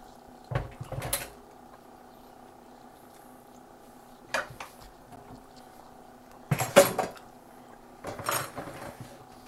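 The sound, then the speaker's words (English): A metal strainer is shaken to drain food in a handful of short, clattering bursts spaced a few seconds apart, rattling loudly against a steady low hum with no talking. “So just shaking all that.”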